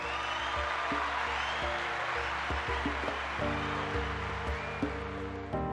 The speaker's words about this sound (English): Roaring applause.